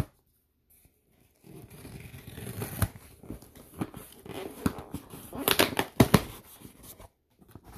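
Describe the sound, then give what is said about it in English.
A cardboard box measuring 8x10x5.25, shipped from Hunt Valley, Maryland, is torn open and unpacked, with ripping tape, rustling packing paper and sharp crinkling bursts coming in uneven flurries after a brief silence. “I see lots of packing paper inside.”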